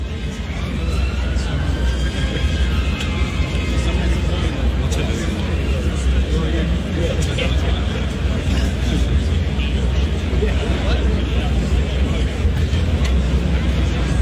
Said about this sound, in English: I just want to play the crowd noise. So these are people who showed up. It's not as big as the pro-Palestinian one, but these are people, it's a good-sized crowd. They showed up in support of Israel.